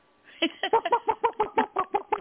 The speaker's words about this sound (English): That's a chicken. A rooster, I don't know.